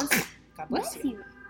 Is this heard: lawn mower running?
no